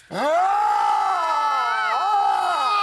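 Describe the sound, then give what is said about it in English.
A few people in a studio let out a loud, sustained scream together, starting abruptly and holding for nearly three seconds with wavering pitch before breaking off. “Yeah, I have never wanted to scream more in my life than I do right really?”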